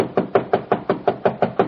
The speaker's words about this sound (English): Why didn't you answer my knock?